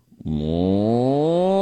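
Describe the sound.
A person imitates a cow with one long, loud, low moo, a buzzy voiced tone whose pitch slowly rises as it's held for well over a second.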